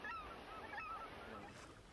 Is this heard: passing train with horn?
no